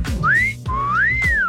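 A person whistles a clear, bright tune, two smooth rising and gliding notes with a brief pause between them, with no talking.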